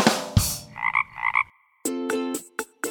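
A frog croaks several times in quick, uneven bursts, loud, with brief pauses between the ribbity calls and no talking.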